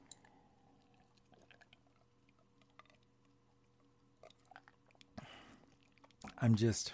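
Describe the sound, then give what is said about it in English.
Someone takes a drink of water: faint clicks and small mouth sounds in near silence, a brief rustle, then louder gulping and slurping at the end. “Drink some water.”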